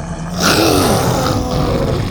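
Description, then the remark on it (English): A deep, rumbling roar from Buck, a dinosaur with a long red tail, roaring at Triceratopses, swells in loudly and holds for about two seconds, gravelly and sustained with a slight growling waver, with no talking. “He roared at them and they cowered back.”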